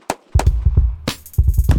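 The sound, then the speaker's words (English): Loud, sharp gunshots crack in quick irregular bursts, a dozen or so booming reports clustered together with a brief pause in between, with no voices. “Other than that, these are gunshots.”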